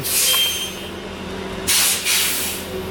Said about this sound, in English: Here's the bus.